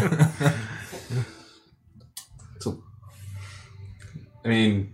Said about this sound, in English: I'll watch you take the drink. You've come a long way. No sputting and spittering. There it is.